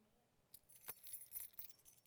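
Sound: keys jangling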